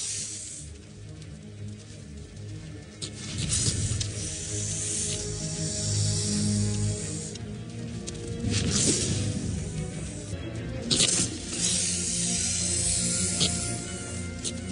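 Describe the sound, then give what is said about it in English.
A cobra hisses in several sharp, breathy bursts, fairly loud, with pauses between them, while confronting a group of meerkats, over a steady low musical drone. No one speaks. “Outmaneuvered, the cobra bows its head and retreats.”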